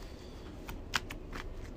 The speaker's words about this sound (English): Shuffle the encountered discard pile back into the deck. I haven't had to shuffle everything.